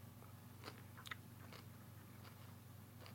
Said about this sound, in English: Okay. Sorry. Awkward pause while I chew.